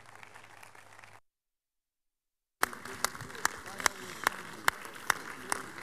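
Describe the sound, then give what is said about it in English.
An audience rises and claps together to celebrate and praise God in the morning, a dense wash of applause dotted with sharp, distinct hand claps, starting abruptly after a short silence and continuing steadily. “And please, let's rise together and keep clapping and celebrating God with a bigger hand of praise.”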